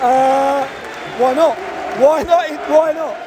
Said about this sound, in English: Everyone's still applauding. Bees players are coming around. Very happy. Everyone's very happy. All the fans are, listen, they're all delighted here.